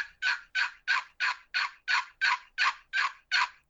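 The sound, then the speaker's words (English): A bloodwood and hickory box call, the Barking Hen from Roostum Hunting Products, scrapes out a steady run of about a dozen raspy, turkey-hen-like yelps, evenly spaced, with no talking over it. “It is a bloodwood and hickory box call.”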